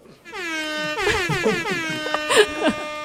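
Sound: siren sound effect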